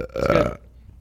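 burp

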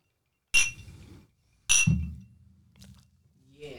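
drinking glasses clinking

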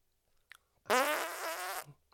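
loud fart

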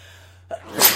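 a big sneeze

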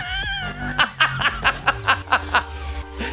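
cat yowling

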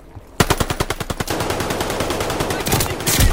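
video game gunfire

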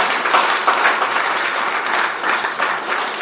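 audience applause

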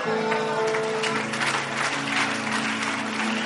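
audience clapping

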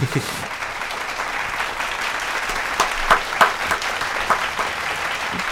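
round of applause

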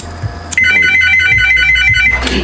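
mobile phone ringtone ringing

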